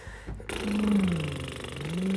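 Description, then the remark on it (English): A buzzing lip trill (a lip flutter vocal exercise, also called horse lips) carries a steady voiced tone that dips slightly in pitch and then slides back up, sustained for about two seconds after a brief breathy start. “Some people call these horse lips.”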